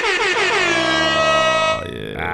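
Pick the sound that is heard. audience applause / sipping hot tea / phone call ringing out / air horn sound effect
air horn sound effect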